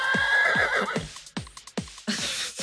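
A horse neighs loudly, a shrill wavering whinny followed by snorting bursts and breathy huffs, with no talking.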